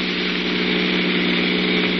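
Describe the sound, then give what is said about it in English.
A truck engine roars loudly and continuously as the truck speeds up a little, a dense, steady drone with a low humming undertone and no voices over it. “I think the driver of that truck is getting wise. We're following him, Mike. Yeah, speeding up a little.”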